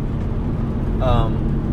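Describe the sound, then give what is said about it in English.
Steady low rumble of a car cabin while driving, a constant droning hum filling the whole clip, with a brief snippet of a voice partway through. “There's quite a bit of noise in this car.”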